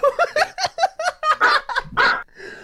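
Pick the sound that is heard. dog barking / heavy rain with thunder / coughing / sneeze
dog barking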